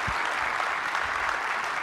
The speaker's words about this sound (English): I'm announcing today our cyber kick, ladies and gentlemen. This is, yeah, big round of applause for us. Yeah.